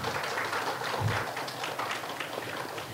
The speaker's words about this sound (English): But I wanted to tell you a little bit about Uber and Lyft and ask, can I have everybody clap who are Uber and Lyft users?